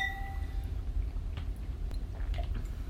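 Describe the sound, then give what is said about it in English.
Wine glasses clink once in a toast to a second bottle of wine at the very start, a bright ringing tone fading within a second, followed by quiet handling clicks and low background rumble. “All right, cheers to bottle two.”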